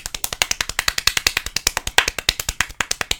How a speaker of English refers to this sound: Give him a round of applause, ladies and gentlemen.